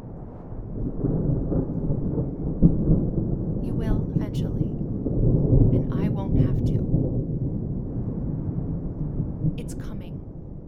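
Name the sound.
rain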